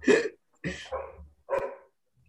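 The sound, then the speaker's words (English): A dog barks four times in quick, uneven succession, a few short, sharp barks with brief pauses between them, and no talking. “Oh, we got a dog.”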